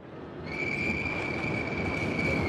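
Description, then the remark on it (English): A subway train on the line through Kendall Square between Harvard Square and Boston rumbles loudly along the rails, building up in the first half second, then a steady high metallic squeal of the wheels rings over the heavy roar. No one speaks. “And do we wish we could have a subway that operated that well and that fast today, because it was 3 minutes between stops and they ran trains.”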